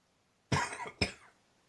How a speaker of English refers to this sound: How you feeling? You okay? You got a cough? You doing all right over there? Okay. I got a summer cold, strep throat, the whole deal.